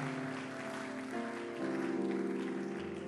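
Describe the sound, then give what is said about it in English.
A church audience claps in a dense, continuous patter for about three seconds, with sustained keyboard or organ tones holding underneath and no one speaking. “Oh, I thought you'd be happy and say, and clap your hand and say, amen.”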